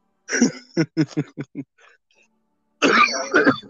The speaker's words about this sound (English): All right, I'm okay, guys. Don't worry. Now we're both coughing.